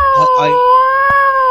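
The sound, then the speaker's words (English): Pet cats caterwaul in a long, steady, wailing yowl that holds for the whole moment, with a couple of quick meow-like cries breaking in near the start. Loud. “Is that your cats? I'm going to do all of those things. Those noises are so unnerving.”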